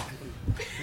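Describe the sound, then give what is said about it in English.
A single dull slap as a stack of notes is smacked down onto a table, brief, with no talking around it. “I just thought it was this very exciting time to just slap down my notes like a scene in a lawyer movie, legal movie.”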